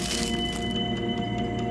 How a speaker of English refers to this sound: My signature dish, marinated chicken pieces. E kai. I pull the tinfoil off the chicken.